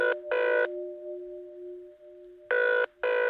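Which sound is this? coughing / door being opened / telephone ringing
telephone ringing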